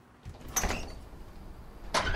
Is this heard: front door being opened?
yes